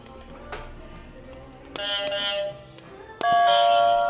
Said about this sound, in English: I'm sorry, obviously now only need to speak when you press your buzzer.